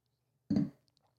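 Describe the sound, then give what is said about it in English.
A single quick sip from a drink, followed by a couple of faint soft clicks; no one speaks. “I'm going to take a sip. And I would be taking a sip as well.”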